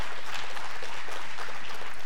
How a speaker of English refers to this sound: If you're excited, give God a good hand clap of praise about that.